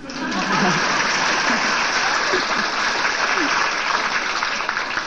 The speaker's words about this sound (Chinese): OK， 嗯，好，现在可以拍手了。